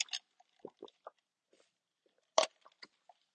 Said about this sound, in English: I need to drink a sip of my water, so hold on.